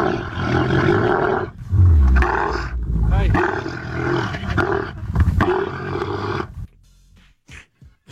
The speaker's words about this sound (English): And the ratings are what they are, so we don't have to get questioned on why we played camel mating noises at 7:30 in the morning.